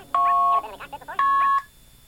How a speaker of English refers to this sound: I don't know that one. So here's a coin collect for a green box.